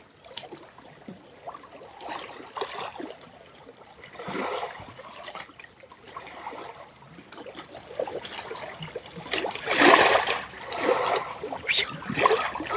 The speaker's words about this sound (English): Now listen to the water.